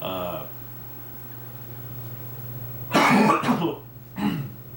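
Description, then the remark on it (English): A loud burst of harsh coughing, two or three rough hacks in quick succession, followed by a brief pause and one more short cough, after a moment of speech at the start. “I'm sorry that I'm coughing.”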